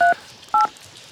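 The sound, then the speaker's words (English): Two short touch-tone beeps from a phone keypad being dialed, each a steady dual-pitched tone lasting a fraction of a second, separated by a brief pause, with no voices. “I need to make this call first.”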